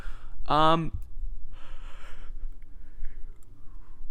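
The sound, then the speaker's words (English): A single drawn-out yawn with a brief voiced, strained stretch, followed by a softer breathy exhale, then quiet. “I keep yawning, and that's what the pauses are.”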